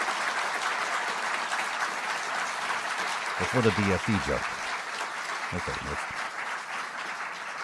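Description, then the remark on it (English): Steady audience applause fills the whole stretch, a dense, even clatter of many hands clapping, while a man's voice briefly speaks over it partway through. “You gotta let the applause go.”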